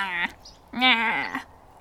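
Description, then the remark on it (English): Someone imitates a goat bleating with two loud nasal bleats: a short one, a pause, then a longer, quavering one whose pitch wobbles before trailing off. “He turned into a goat.”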